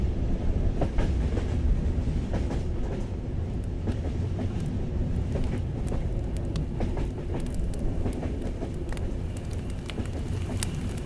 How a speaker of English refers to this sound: Oh, I love those distant train sound horns. It sounds so nice.